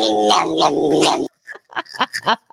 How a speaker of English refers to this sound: That was like the devil cat. Rah, rah, rah, rah.